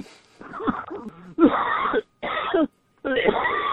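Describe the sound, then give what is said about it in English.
Someone coughs and sputters, choking on a cup of coffee: a few rough, throaty noises, then three loud, harsh bursts of coughing separated by brief pauses. “I'm choking on my cup of coffee.”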